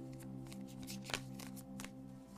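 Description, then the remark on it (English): Tarot cards being shuffled, a run of crisp papery flicks and riffles with one sharper snap in the middle, over a steady low hum. “Yeah, these cards are really hard to shuffle.”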